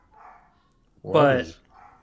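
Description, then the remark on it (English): A single loud, drawn-out bark with a rising yelp-like pitch from Bosco, a dog playing with a puppy downstairs, set between stretches of faint, quiet talking. “Bosco's going crazy downstairs because I think he's playing around with the puppy.”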